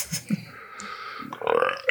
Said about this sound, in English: Oh, good. Keep that belch in there.